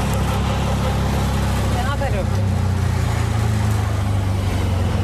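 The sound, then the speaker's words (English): A car engine hums steadily as the vehicle drives and pulls up to the Dr. Ambedkar International Center on Janpath. A continuous low rumble with road noise holds at a fairly even level throughout, with a brief chirpy squeak partway through. “Okay, I'm pulling up to the Dr. Ambedkar International Center.”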